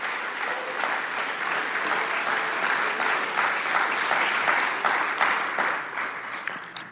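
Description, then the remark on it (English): An audience at Gateway church applauds steadily for several seconds, giving the Lord a clap during worship: a dense, even wash of many hands clapping at a constant loudness, tapering slightly at the end with no voices over it. “You want to give the Lord a clap and do that.”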